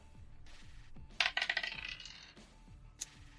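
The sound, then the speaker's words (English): Dice are rolled to hit, clattering across a tabletop in a quick burst of rattling clicks that slow and fade out, then one more sharp tap after a short pause. Fairly loud, with no talking. “Roll to hit. All right. Dice, please.”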